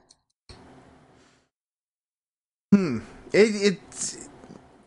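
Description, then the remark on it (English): A soft, drawn-out inhaling sniff of an original Monster energy drink in a brown glass bottle, lasting under a second, followed after a pause by a few louder voiced murmurs and a sigh-like reaction. “Sniff test.”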